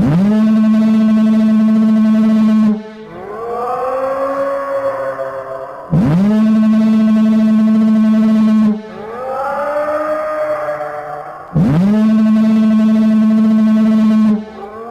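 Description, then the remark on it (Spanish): A deep, steady foghorn blast alternates with a rising, wavering monstrous roar from a monster no more than 100 metres away, trading back and forth about three times. Both are loud, with no talking. “El monstruo estaba ahora a no más de 100 metros, y él y la sirena se gritaban en forma alternada.”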